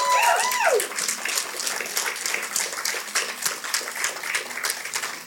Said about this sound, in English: If that's you, you registered to be baptized, would you stand at this time just so we can honor you and clap? Come on, church. Can we thank God for these two?